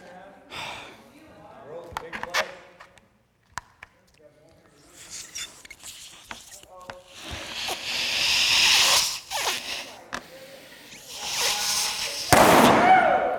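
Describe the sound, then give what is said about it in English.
A balloon is blown up bigger than it is supposed to be with repeated hissing gusts of air, growing louder, then bursts with a single loud, sharp pop near the end. Faint voices and breathing come between the puffs. “Yeah, this balloon's not supposed to be this big.”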